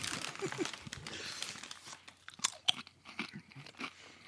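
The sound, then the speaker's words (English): Crisp crunching and wet chewing of a Double Stuf sandwich cookie, with irregular bites and crackly bursts over about four seconds, no talking. “Do a double stuff. I'm going to do a double stuff.”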